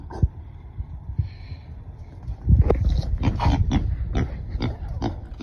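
A pet pig in a video grunts low and steadily, then breaks into a series of louder, harsh squeals and snorts in quick bursts, with no one talking.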